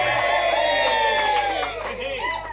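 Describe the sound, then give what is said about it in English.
A crowd cheers loudly for a couple of seconds, many voices whooping and yelling together in a dense, sustained roar, with some shouts sliding downward in pitch toward the end. “And if anything, you know, if the crowd says it, it must be true.”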